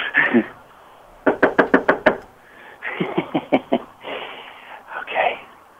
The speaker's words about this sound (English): I'm waiting now. Knock again.